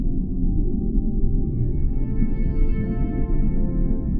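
A deep, sustained blue whale call rumbles continuously, with low droning tones and faint higher harmonics rising midway, resonant and steady throughout with no talking.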